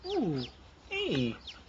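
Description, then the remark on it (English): Two loud squawking clucks slide downward in pitch, each about half a second long, with thin high chick peeps scattered between and after them. “And then finally everyone watches him screaming at the chicken.”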